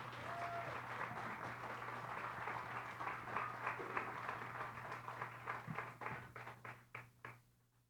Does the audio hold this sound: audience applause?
yes